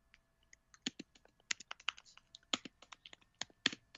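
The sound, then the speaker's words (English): Rapid, irregular keyboard typing, fairly crisp, with bursts of clacking keystrokes and brief pauses. No voices are heard. “Oops, someone's typing away.”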